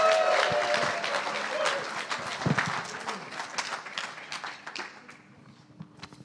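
An audience bursts into loud, dense applause with scattered cheers and whoops to welcome a speaker, the clapping gradually thinning and fading over about six seconds.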